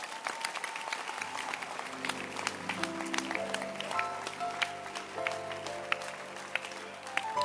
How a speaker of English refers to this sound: Clap your hands for him.